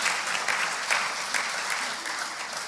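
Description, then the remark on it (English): An audience claps steadily, a dense wash of many hands with sharp bright peaks scattered through it, holding a fairly even loudness for a few seconds. “Yeah, it's a good place to clap.”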